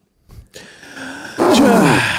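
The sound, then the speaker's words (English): A couple of quick catching inhales build up, then a loud, violent sneeze bursts out, a harsh voiced blast that stays strong for most of a second. “Sorry, I gotta sneeze again.”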